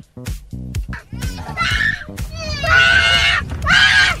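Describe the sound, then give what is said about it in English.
A young child shrieks in long, piercing bursts, the screams loud, rising and falling over a steady low cabin rumble like an airplane engine drone, on an 8-hour flight from Germany to New York City in August. “This young child just screaming throughout the entire flight.”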